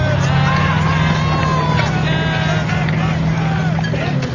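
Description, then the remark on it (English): A heavy truck engine rumbles loudly and steadily as it rolls by without slowing, while men shout for it to slow down and give them a lift, with crowd-like noise mixed in over the low drone. “We'll hit you right in one of them other trucks. Hey! Hey! Slow down! Give us a lift, you pricks!”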